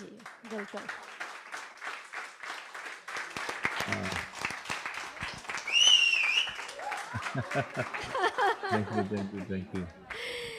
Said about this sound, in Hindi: सच्ची यहाँ इतना चार्ज्ड माहौल है, इतने कम लोग हैं हम, फिर भी इतना शोर और आपके लिए इतना सारा प्यार है. यही मैं सुन रहा था, तालियां इतनी जोर से बज रही है, तो मैं इसीलिए मैंने उनको देखना चाहा.